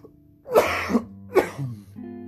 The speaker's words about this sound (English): Damn, I can't even talk. I'm over here fucking still coughing.